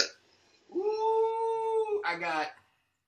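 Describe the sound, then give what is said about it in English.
A small dog lets out a long, steady, high-pitched howling whine lasting over a second, then breaks into a brief wavering cry, fairly loud with no talking. “Oh, this little dog is driving me nuts, man.”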